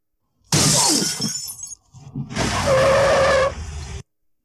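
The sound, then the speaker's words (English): A loud burst of shattering glass as Fulton Reed's hard shot at a suitcase in an alley misses and hits a van window, followed after a short pause by a second longer crash of breaking glass with a sustained squealing tone running through it before it cuts off. “That was Fulton Reed clapping a bomb at a suitcase in an alley, and it missed and it hit the window of a van.”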